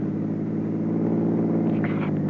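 A chauffeur-driven car drives toward Madrid near midnight with a steady, low engine hum and road rumble that stays constant throughout, as if from inside the vehicle, with no voices.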